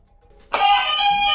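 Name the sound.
game show buzzer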